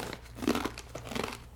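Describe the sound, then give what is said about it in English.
Crisp crunching of someone chewing crunchy vegan Parmesan chips, a quick run of dry crackling bites with no talking, at a moderate level. “He's crunching. You can hear the crunching.”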